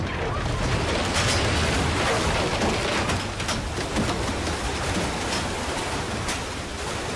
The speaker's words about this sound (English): And then another frog hits his windshield. And then frogs start raining from the sky. Oh, the frogs falling from the sky.